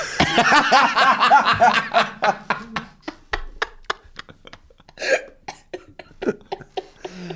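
A fit of coughing: a wheezy, laugh-like stretch breaks into a long run of short, sharp coughs and gasps at uneven intervals, with no talking.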